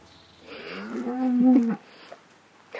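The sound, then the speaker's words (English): A cow lets out a single long moo lasting over a second, followed by quiet rustling and a couple of soft shuffling knocks as cows jostle each other beside a track into a village in the morning. “They're all jostling each other for a look at me.”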